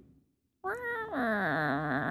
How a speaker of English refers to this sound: Meow. Meow.